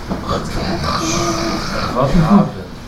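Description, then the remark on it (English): A voice imitates loud, obnoxious snoring: rough, pig-like snorts and grunts running for about three seconds, swelling into a harsher burst toward the end. “I mean, just obnoxious loud snoring.”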